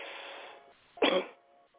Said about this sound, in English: Deep breath and cough from your gut, not your throat.